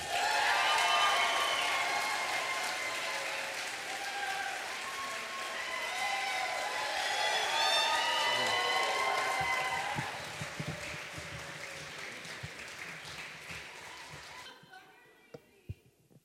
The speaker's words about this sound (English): Are you guys all warmed up and ready to give a huge round of applause to our next poet